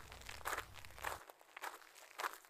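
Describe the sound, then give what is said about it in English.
Four slow, evenly spaced footsteps crunch across gravel, each step a gritty scuff. The steps are fairly quiet, with no voices. “Bartimaeus was sitting by the road, unable to see any of this, but able to hear the crowd speaking about Jesus, able to hear the excitement in their voices, and maybe even able to hear Jesus' footsteps.”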